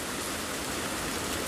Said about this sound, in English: That's summer rain.